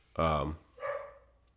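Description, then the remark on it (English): A dog barks twice in quick succession, the first bark loud and full, the second shorter and softer, with no other sounds around them. “I hear a puppy. It's my doggy.”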